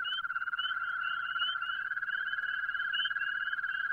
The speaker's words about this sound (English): They're what's known as your common garden toad. You'd never expect something with so many warts could sing like this. And listen to the way they all get together into these toad choruses, all twirling away.